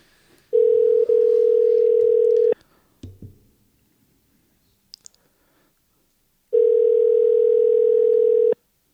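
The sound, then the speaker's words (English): A phone ringing out as a cold call is placed: two loud, steady electronic tones of about two seconds each, separated by a quiet gap with a few faint clicks and handling noises, and no talking. “Oh, we're doing a cold call.”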